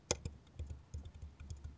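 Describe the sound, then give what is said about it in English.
A series of dull, low thuds tapped out on a wobbly desk in an irregular, typing-like rhythm, fairly soft, mimicking the muffled knock of keystrokes carrying through the tabletop. “Like, it sounds kind of like this.”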